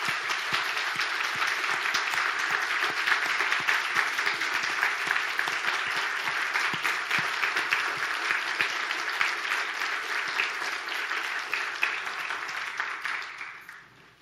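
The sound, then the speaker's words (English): A large crowd claps steadily and warmly for about fourteen seconds for armed forces veterans standing among them, a dense, even patter of many hands, tapering off near the end. “Can we get a round of applause for these?”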